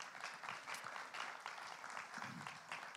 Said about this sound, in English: So, hey, why don't you give yourselves a clap for that?